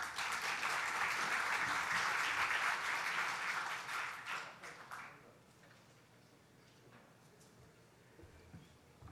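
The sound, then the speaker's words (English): An audience gives a second round of applause for a speaker after his presentation on tourism investment in Greece, dense, crackling clapping for about five seconds, then it fades out to a quiet hush. “If I may ask you for a second round of applause because he gave a great presentation and he kept the time.”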